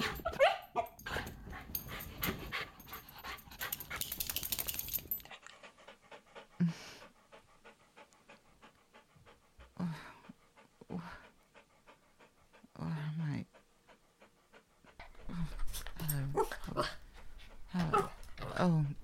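A dog pants heavily and rapidly, then lets out short, high whimpers and yips in intermittent bursts, with brief pauses between, before the panting picks up again toward the end.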